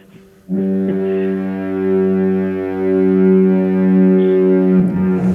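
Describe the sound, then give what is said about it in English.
A deep, loud Duluth double foghorn sounds in one long sustained blast of several seconds, its rich layered tones droning steadily with no voices before it cuts off. “Duluth double foghorn, please.”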